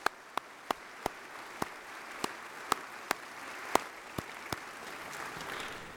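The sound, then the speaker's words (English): A round of applause for performers at a church service, made of sharp, distinct claps at uneven intervals over a steady background hiss, thinning out toward the end. No one speaks. “We owe them a big round of applause, huh?”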